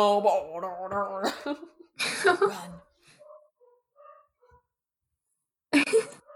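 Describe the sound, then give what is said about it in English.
Dogs bark and whine excitedly in a different part of the house, three doors away, a few sharp muffled yelps separated by quiet gaps with faint high squeaks. “Can hear my dogs going nuts.”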